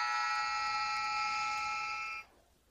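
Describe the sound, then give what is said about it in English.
A clothes dryer buzzer sounds in one long, steady, harsh electronic tone with several bright harmonics, holding for about two seconds before cutting off abruptly into quiet background hiss. “I think that was a dryer going off.”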